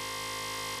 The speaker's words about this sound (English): It was after the buzzer, wasn't it, baby? Yeah, it was.